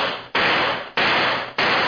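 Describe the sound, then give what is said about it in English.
Four sharp, loud gunshots crack out in an uneven rhythm, each blast ringing off in a broad, hissing decay before the next one hits. No voices are heard. “Only four shots that time.”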